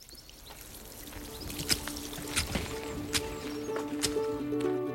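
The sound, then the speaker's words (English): Boiled water pours steadily over basil leaves in a vessel to make an infusion, a continuous splashing trickle with a few sharper spatters and clinks along the way, moderately quiet with no one talking. “I would put 3 to 4 leaves or 4 to 5 leaves, depending on the size of the leaf, the flavour of the leaf, and add boiled, not boiling, water.”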